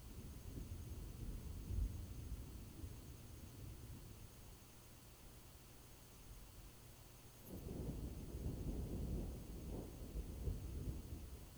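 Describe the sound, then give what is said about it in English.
A thunderstorm with low thunder rumbling on and off, swelling into a longer rolling growl partway through, over a steady hiss of rain. No voices. “You hear the storm before you see it.”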